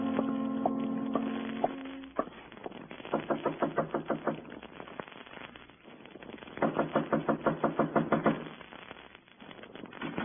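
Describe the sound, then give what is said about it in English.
Two bursts of rapid, insistent knocking on a door in the morning, each a quick run of about ten sharp raps, separated by a short pause. A brief sustained tone sounds beforehand, and no one speaks. “This morning, nothing bothers me. Not even an early knocker on my door.”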